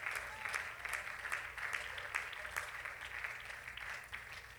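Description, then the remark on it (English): An audience claps their hands to the Lord in praise at a service tonight, dense, sustained applause, many overlapping claps forming a steady wash of sound at moderate loudness, with a low hum underneath and no voices standing out. “Let's clap our hands to the Lord and let's give God great praise tonight in Jesus.”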